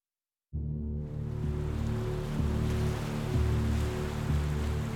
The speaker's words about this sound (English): On the northeast coast of the United States, the temperate waters of the Atlantic Ocean lap against the shores of Salem, Massachusetts.